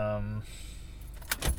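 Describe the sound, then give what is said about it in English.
A car engine's steady low hum cuts out abruptly as the car is switched off, and after a short pause a set of keys gives two brief metallic jingles. “Now it's going to sound good because my car's off.”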